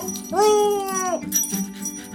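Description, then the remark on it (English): A big orange dog named Senator Something lets out a single drawn-out whimpering whine, rising and then holding steady for about a second before trailing off, fairly loud, followed by a short softer sound. “I get some help from a big orange dog named Senator Something.”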